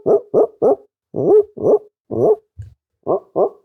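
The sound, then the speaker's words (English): A voice close to a microphone imitates a dog barking, a string of hoarse, rough woofs in quick bursts of two or three with brief pauses, sounding strained and weary like an old, dying dog far off. “It's like a long distance dog that's like kind of old, like about to die.”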